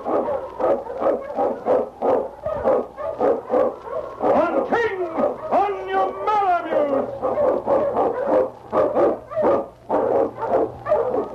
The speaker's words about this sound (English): Wonder Dog King, swiftest and strongest of Eskimo lead dogs, blazes the trail through storm and snow for Sergeant Preston as he meets the Challenge of the Yukon.